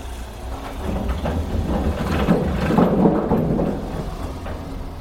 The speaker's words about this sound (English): That was a car going over a bridge. Well, it wasn't a pike. You were beside a little... Swing bridge that you can manually swing. Yeah. So that the farmer can get across the canal. Yeah, and the boats can get through.